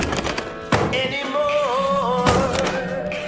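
Two dull, heavy knocks on a door, spaced well apart, with a wavering tonal sound like music or humming continuing underneath.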